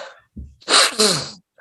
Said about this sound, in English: Bless you.